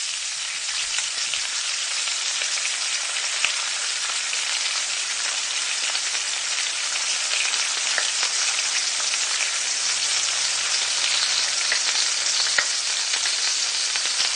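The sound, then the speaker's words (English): Bacon sizzles and crackles steadily in a hot pan, a dense hiss with scattered pops running unbroken throughout, no voices present. “So yeah, we're going to play 15 seconds, right, of this bacon frying sound.”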